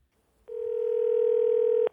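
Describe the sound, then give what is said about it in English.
A steady telephone dial tone while placing a call sounds for about a second and a half, a loud, even electronic hum with a clean pitch and sharp start and stop, with no voices. “So let's give Peter a call.”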